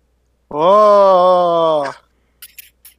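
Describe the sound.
A man lets out one loud, sustained scream from inside a gym, lasting about a second and a half, steady and low-pitched, then cuts off, followed by a few soft, brief scuffing clicks.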